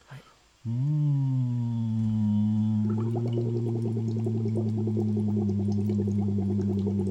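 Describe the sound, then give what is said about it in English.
A steady, low hummed tone blown through a full-length straw out of water, which turns into a continuous bubbling gurgle once the straw is put in water about halfway through, and stays loud and even to the end. “And I'm going to do the straw out of water, and then I'm going to put the straw in water, and you'll hear the bubbles.”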